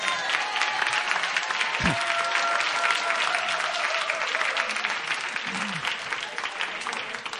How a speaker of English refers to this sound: All right, you guys can start clapping.